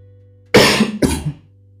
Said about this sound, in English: Yeah, sorry, I have a bad cough and you know, it's flu season.